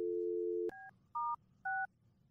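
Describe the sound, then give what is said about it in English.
A steady telephone dial tone hums, then stops with a click, followed by three short two-tone keypad beeps spaced about half a second apart as a number is dialed to call back from the same phone line, clear with no voices. “Yes, we're calling back from this line again.”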